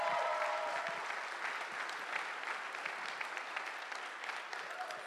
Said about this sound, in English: Come on, give her a big hand clap.